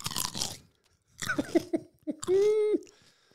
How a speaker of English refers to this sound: Can we pretend we're on a first date, and mm-hmm. then every time I ask you a question, you chew like that?